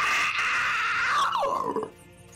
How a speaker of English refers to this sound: Immediately, you hear from the other side the shrieks and howls of the dead.